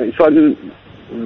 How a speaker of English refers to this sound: See, his phone's, it's repeating back to me now. I'm getting an echo on the line,